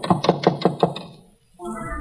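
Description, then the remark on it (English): About six quick, evenly spaced knocks on the wooden door of a cottage, fairly loud, fading into a brief silence before a steady low background sound comes in. “I knocked and waited.”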